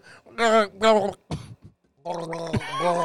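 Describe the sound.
A voice makes wet, gurgling mumbles while speaking with a mouthful of water: two warbling bursts, a short sputter, then a longer bubbling stretch, fairly loud.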